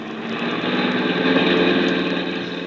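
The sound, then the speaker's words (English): A car engine runs hard at speed, a steady droning roar with a dense rumbling hum that swells slightly midway and stays loud throughout, with no voices. “Please, do you have to drive so fast?”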